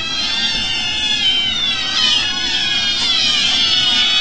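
A crowd of cats meowing and yowling at once, their overlapping cries forming a loud, continuous chorus with no pauses and no one talking.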